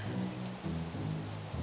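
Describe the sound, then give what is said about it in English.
Rain starts and falls steadily and continuously, a dense, even hiss that fills the whole moment, with a low droning hum running underneath it and no voices. “I'm sick of rain.”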